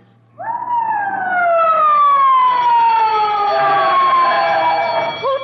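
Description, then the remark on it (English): A loud fire alarm siren, set off as a false alarm by breaking the glass of a fire alarm box, bursts in and wails steadily, its pitch sliding slowly downward with a rich harmonic tone, sustained for several seconds with no voices. “There's a fire alarm box. They have to arrest you if you turn in a false alarm.”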